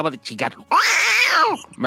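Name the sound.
kitten meowing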